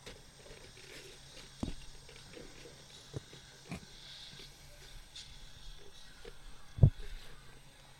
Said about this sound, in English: And then it's a zombie pig, right? I swear that's what happens.